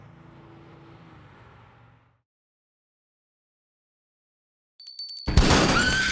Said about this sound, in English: Wendell Poole blew the glass door out with a shotgun blast. He fired a second time at a car saleswoman who fled.